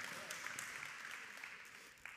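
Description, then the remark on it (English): A crowd claps steadily, a dense wash of many hands applauding at moderate volume, sustained without a clear ending. “I have another friend, and he was the president of, I mean, you don't really need to clap for that. I don't really like it when people applaud me, so.”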